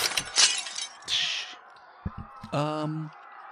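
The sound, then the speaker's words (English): A loud burst of shattering glass crashes in as the back window of a 2018 RAV4 shatters from the impact of the car bumping into another car, spilling into a second tinkling wave of shards, followed by a few soft knocks and a brief voice exclaiming. “And the back window of the RAV4 shatters from the impact.”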